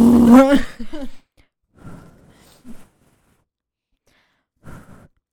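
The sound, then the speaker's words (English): A drawn-out vocal sound opens, followed by close, wet chewing and gum-smacking noises in a few short bursts separated by silence. “The chewing, the smacking of the gums.”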